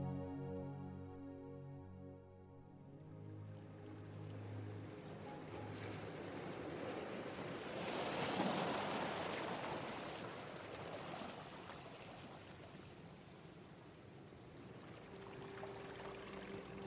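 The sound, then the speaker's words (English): Gentle waves lap and wash against a shore of eastern New Zealand (Aotearoa) in a soft, continuous swell that rises to a fuller surge midway, with faint music fading out at the start. “An albatross bobs along on the gentle waves that lap against the shore of eastern Aotearoa, also known as New Zealand.”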